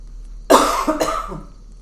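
Two harsh coughs in quick succession, the first sharp and loud, the second slightly weaker, with no talking around them.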